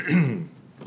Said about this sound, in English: Let me clear my sniffles.